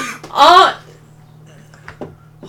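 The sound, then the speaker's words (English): One loud, rough cough bursts out near the start, then things go quiet apart from a low steady hum and a few faint clicks. “You went coughing on fucking”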